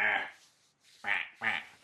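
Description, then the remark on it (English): A person imitates a duck with three nasal, harmonic quacks: one at the start, then two more in quick succession after a brief pause. The quacks are fairly loud, with no other sounds. “I'm a duck.”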